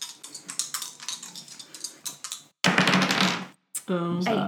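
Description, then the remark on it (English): Two dice are rolled for a game roll, rattling and clattering in a quick run of small clicks, followed by a louder, rougher tumble; a voice starts speaking right at the end. “So it would be two dice plus...”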